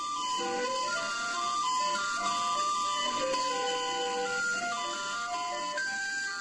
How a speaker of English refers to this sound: So you've got that charm of the old popsicle truck or something when we were kids in the neighborhoods of Mexico City today.